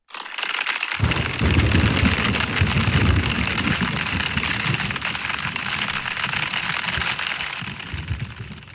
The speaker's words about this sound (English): This must be the monsoons. Well, it turned into this lightning storm that was incredible. We were getting these blinding flashes in the tent. And then shortly after this heavy rain came and all this lightning, this is the soundtrack.